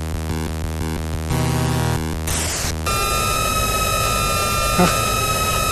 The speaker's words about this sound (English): You want to hit him with that sound? That the ghost noise when the arrow hits in particular is disturbing.